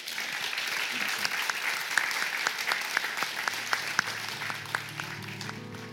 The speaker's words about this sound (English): Okay, well, thank you very much, everyone, for coming for this evening's talk. But a round of applause, please,